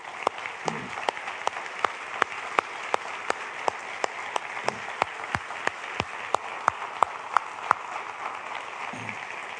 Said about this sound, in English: I like to recognize everybody who is serving or has served in our armed forces. I'd like for you to stand up. We'd like to thank you just with a little applause.